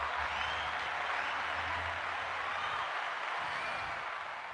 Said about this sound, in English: I'll give you some claps.